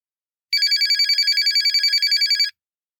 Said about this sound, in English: The sharp ring of her mobile phone brought her out of the ruminations.